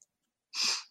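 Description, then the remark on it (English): A single sharp sneeze bursts out about halfway through, a short, breathy, hissing blast that fades quickly, with silence before it and no talking. “when you were sneezing, Rita says she can't spell Gesundheit.”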